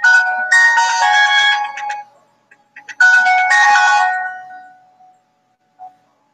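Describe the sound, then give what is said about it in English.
Steve's phone plays a ringtone of two bright, melodic bursts of about two seconds each, separated by a short pause with a few faint blips, loud with no talking. “Must be Steve's phone.”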